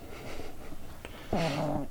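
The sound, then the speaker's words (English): A small dog, a female miniature pet Yorkie held by its owner during an interview, snoring: a second of soft, breathy rasping, then one louder, drawn-out nasal snore with a droning, slightly whiny tone. No one speaks. “She's snoring.”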